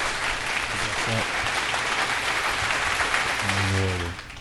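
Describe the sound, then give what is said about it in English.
A round of applause given in tribute to the legacy of Black Panther: dense, steady clapping from many hands that stays loud throughout, with brief vocal sounds rising over it and a short held tone near the end. “So, a round of applause and Wakanda forever.”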